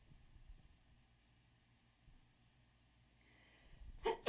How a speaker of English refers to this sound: Hold on, I have to sneeze.